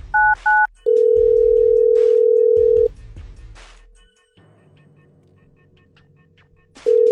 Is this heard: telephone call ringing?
yes